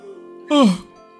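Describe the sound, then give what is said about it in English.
A single big voiced yawn, short and loud, its pitch sliding steadily downward before trailing off into a faint steady hum. “I'll give another big yawn.”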